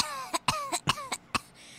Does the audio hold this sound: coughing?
yes